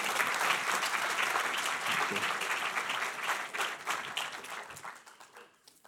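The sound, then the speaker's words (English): A crowd bursts into sustained applause welcoming Andrew Roberts to the podium, many hands clapping in a dense, steady wash that holds strong before gradually thinning out toward the end. “And now, please join me in welcoming Andrew Roberts to the podium.”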